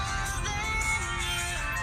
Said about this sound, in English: Oh, this is gonna be a ringtone too.